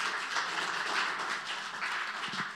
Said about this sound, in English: Thank you so much to our worship team. Hey, can we give a round of applause one more time for our worship?